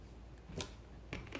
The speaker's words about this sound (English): Did you just break the toilet? Anyway, I don't know. The toilet just slammed upstairs, and I don't know what my wife is doing, but I think she might have just broke something.